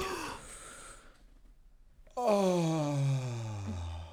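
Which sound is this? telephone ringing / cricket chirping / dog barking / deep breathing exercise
deep breathing exercise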